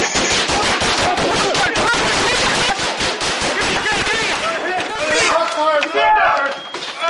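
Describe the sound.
Rapid bursts of loud gunfire crackle continuously, sharp repeated shots overlapping in a dense fusillade, with shouting voices mixed in and rising toward the end.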